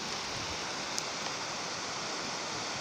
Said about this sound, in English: And this is the Maramataha River you can hear down below.